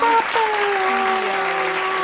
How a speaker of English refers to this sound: Last but not least, I just have to give a big round of applause to Tyler Perry. Woo!